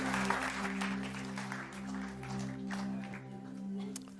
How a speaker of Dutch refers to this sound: Wonderful. Why don't we give the band a hand? Thanks, guys. Laten we de band een applaus geven.